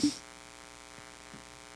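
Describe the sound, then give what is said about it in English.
A phone call's ringing tone sounds as a steady, faint electronic drone, heard alone with no one talking, after a brief soft click at the start. “I kind of want to call Fresco because I heard he was here. Call him up. Let's see if he answers.”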